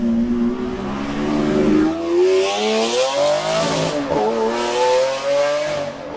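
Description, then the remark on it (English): A powerful Lamborghini V12 supercar engine with 12 cylinders revs hard and accelerates, its loud, screaming pitch climbing through several gear changes, continuous, with no voices. “For example, the 12 screaming cylinders of a Lamborghini engine revving.”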